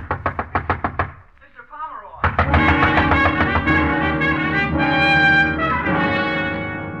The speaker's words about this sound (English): The bellboy out there pounding on the door.